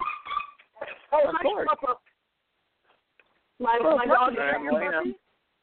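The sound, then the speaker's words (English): A dog whimpers, whines and yips excitedly in greeting its owner coming home, fairly loud, in three eager bursts separated by a short pause, with a long, warbling whine at the end. “My dog is happy to see me home.”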